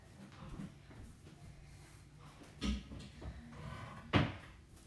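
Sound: drawer opening or closing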